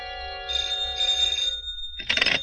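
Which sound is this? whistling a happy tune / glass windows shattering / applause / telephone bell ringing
telephone bell ringing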